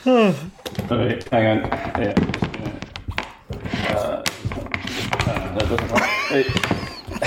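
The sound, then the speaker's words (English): A bookcase, knocked over while someone tries to add an extra book to it, topples with a series of heavy thunks and clattering knocks spread over several seconds, fairly loud, while a person's voice exclaims over the commotion. “Just knocked over a bookcase.”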